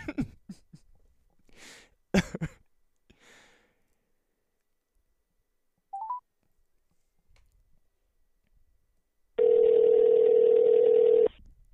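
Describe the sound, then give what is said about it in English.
A phone handset clatters and clicks as the phone is hung up, a short electronic beep follows, then a loud steady dial tone hums for about two seconds before cutting off. “Okay, let me call him back, and then I'll try to, or let me hang up this phone, and I'll try to get a hold of him.”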